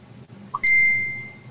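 A phone notification ding: a brief soft blip followed by a bright, sustained high chime that rings out and slowly fades over a low background hum, with no talking.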